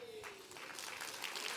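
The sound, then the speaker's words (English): A church audience claps steadily in a dense, continuous wash of applause that swells slightly toward the end, with a faint sustained tone fading underneath at the start. “Come on, come on, come on, clap your hands.”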